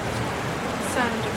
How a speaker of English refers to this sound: There's a roar of water. This is Guzzle Hole. Oh, wow. What a... And it's a huge cave.